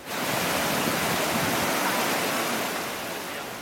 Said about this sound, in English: Dozens of people needed to be rescued after a flash flood tore through the streets of Zaragoza, Spain.